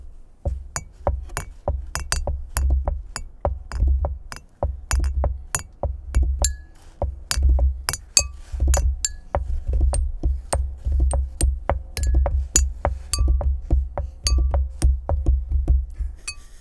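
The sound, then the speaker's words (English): Glasses clink together again and again in a toast, a dense, irregular run of bright chimes lasting many seconds over a steady low rumble, loud, with no talking. “Thanks, guys. Cheers.”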